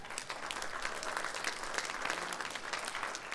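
An audience applauding steadily, a dense, even patter of many hands clapping at a fairly loud, constant level throughout with no voices standing out.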